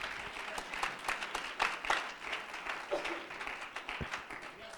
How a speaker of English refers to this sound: If you're thankful for grace, put your hands together and give Him a hand clap of praise.